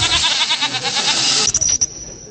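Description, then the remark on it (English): A goat lets out a loud, wavering bleat with a shaky, quavering tone, sustained for over a second, followed by a few brief choppy bursts as it trails off. “Let's find the tab for goat.”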